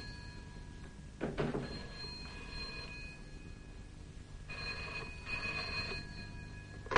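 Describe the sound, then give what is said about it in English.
A telephone bell rings in two bursts with a pause between them, moderately loud, with faint background noise and no talking. “Oh, there's a telephone.”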